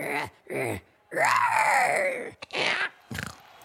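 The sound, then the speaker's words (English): A person imitates a Velociraptor roar: a long rasping, screeching cry that bends in pitch, bracketed by shorter gruff growls and grunts, loud and without any talking. “Now it's time for the Velociraptor. Are you ready? Ready. Give us your best roar.”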